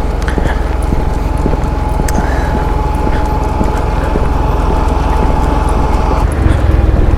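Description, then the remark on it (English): A loud tractor engine passing by rumbles with a steady, rhythmic chugging and a faint whine, holding strong throughout and swelling slightly toward the end, with no one speaking. “I'm just gonna try and get past this really loud tractor.”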